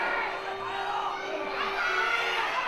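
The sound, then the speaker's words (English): A wrestling crowd cheers steadily, a dense wash of many voices shouting and whooping at a sustained, fairly loud level for the whole few seconds, with no single voice standing out. “Ah, crowd is happy about that.”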